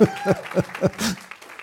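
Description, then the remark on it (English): A short burst of audience applause mixed with cheering voices, fairly loud, swelling briefly before fading. “Can we just give my wife a voice applause here?”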